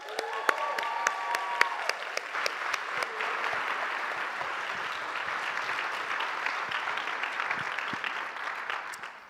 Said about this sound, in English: I'd like you to all give a round of applause